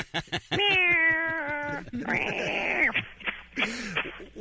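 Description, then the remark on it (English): Sockington (Sox), a cat from Massachusetts with a large Twitter following, meows three times: a long, drawn-out wail, then a strained, whiny meow, and finally a short, softer one, with brief pauses between and no talking. “Why do you suppose so many people are interested in what a cat has to Twitter about?”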